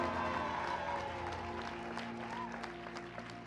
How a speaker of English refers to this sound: This clapping is not for Jesus. That clapping is for your mother-in-law. Clap better for Jesus.